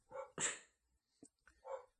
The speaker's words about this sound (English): I'll be right back. My dog is going crazy.